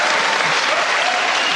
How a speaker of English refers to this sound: Again, a rousing applause for everything this man says.